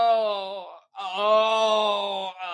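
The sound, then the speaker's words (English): A voice imitates a pet parrot that mimicked an injured person moaning as if hit on the head: two long, drawn-out groans with a steady, slightly wavering pitch, split by a short pause, and a third beginning just as it ends. “Like the person had been hit on the head and they were moaning.”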